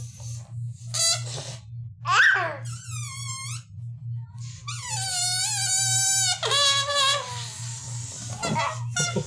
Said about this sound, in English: the balloon air was just farting out at Ellie, and she was like, her hair was like Marilyn Monroe's dress over the gray. She was like, just really enjoying the balloon fart.